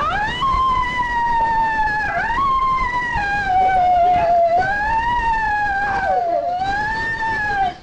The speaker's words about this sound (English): So, well, that siren's pretty awful. Sorry again for you headphone wearers there.